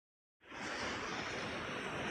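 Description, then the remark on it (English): After a brief silence, a steady roar of ocean surf sets in and continues unbroken, a dense, even wash of sea noise with no voices over it. “I hope you've enjoyed the ocean in the background, if you can hear it.”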